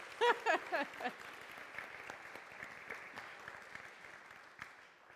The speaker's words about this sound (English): Yes, we can clap. We're allowed.